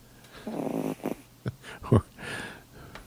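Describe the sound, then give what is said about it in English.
A cat named Charlie snoring softly, recorded on an iPhone, with raspy, snuffling breaths and a few short snorts, quiet and uneven over a few seconds with no talking. “This is the same cat, but snoring.”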